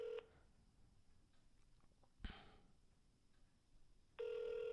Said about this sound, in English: I'm going to call Josh to apologize